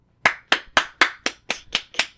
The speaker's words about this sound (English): Clap if you believe in Buddy.